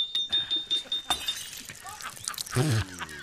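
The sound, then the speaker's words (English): A glass jar with a stuck lid is knocked sharply against a tree several times in quick rhythm to loosen it, then shatters with a bright crash and scattered tinkling shards, followed by a short vocal outburst. “Just tap it against the tree. That'll loosen it.”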